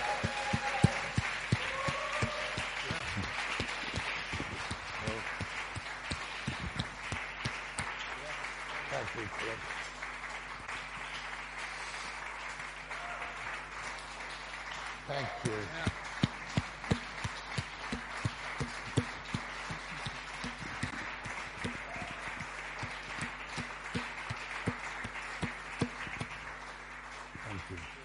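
An audience claps together in sustained, dense applause for nearly half a minute. It stays steady throughout, with a few sharper, louder claps standing out near the middle and end.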